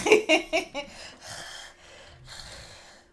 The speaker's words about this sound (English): This is all they're getting is my mouth breathing.